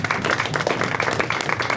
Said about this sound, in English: Wow, that was impressive. First of all, a round of applause for that guess.